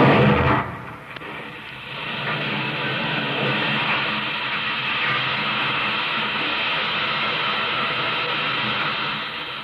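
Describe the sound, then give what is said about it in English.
Oil drilling, pumping and blasting in Oklahoma: a heavy blast-like thud near the start, then a loud, dense mechanical roar that grinds on steadily with no talking. “The voice of the drill, the pump, the blast, and then the rich black oil gushing from the red soil of Oklahoma.”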